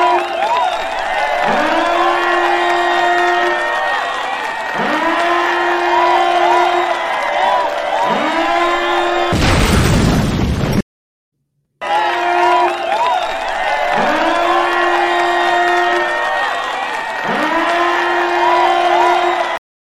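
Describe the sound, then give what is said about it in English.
A loud donation alarm effect, played on a stream to mark a viewer's donation, sounds over a cheering crowd, with rising tonal swoops repeating about every two seconds, a burst of noise midway, a brief dropout, then the looping effect resumes. “So hit the donation alarm real quick. We got to get the donation alarm.”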